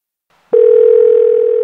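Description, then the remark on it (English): A steady, loud telephone dial tone on a phone picked up in Melbourne, Australia, to call an American number, begins abruptly after a brief near-silence and holds unbroken at a constant pitch until the end, with no voices present. “I picked up the phone and here's how the call went.”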